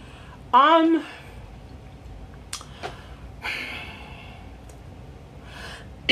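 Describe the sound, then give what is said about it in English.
A single loud cough bursts out early, followed by a few quieter breaths and small throat noises, with no talking. “I'm not coughing because I'm stalling. I really had to cough.”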